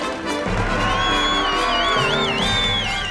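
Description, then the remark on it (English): A crowd lining a street cheers and applauds loudly and continuously for brave country mice, with whoops and high, wavering whistles rising above the dense roar of many voices and clapping hands. “People are lining the street, applauding and cheering their brave country mice.”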